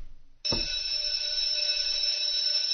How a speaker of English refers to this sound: So now that school's over, ladies and gentlemen, and the fire drill has gone off, and we've all gone home, we've all calmed down.